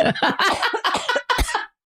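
A rapid, hacking fit of coughing after choking, several harsh bursts in quick succession, then abrupt quiet.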